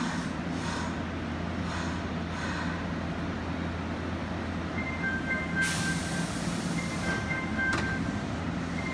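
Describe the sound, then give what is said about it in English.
A Tokyo subway train rumbles steadily at a station platform, with thin whining tones rising over the low drone and two sharp hissing bursts near the end, like brakes releasing air. No one speaks. “Here we have the subway wars, interdependence versus individualism, Japan versus the United States. First, Tokyo.”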